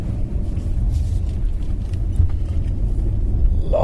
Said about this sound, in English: Long car round the roundabout. It's been a while since I've driven an S-Class.